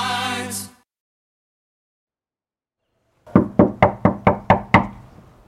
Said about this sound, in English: I knock and wait. Silence.